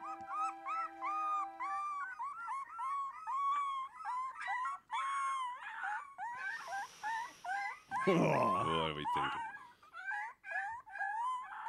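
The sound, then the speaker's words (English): Several puppies whimper and howl together in a continuous chorus of high, wavering whines, fairly loud, with a person briefly speaking over them partway through. “How many puppies are you hearing here?”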